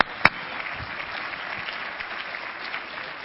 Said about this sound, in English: Sure, so come on, give a Lord some hand clap here.